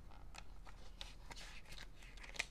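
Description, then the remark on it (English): Quiet rustling and crinkling of handwritten paper pages being handled, with soft irregular crackles and brushing sounds over a low steady hum. “You can feel the paper.”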